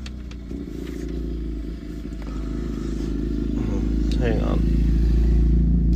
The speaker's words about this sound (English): It's a loud motorcycle coming by.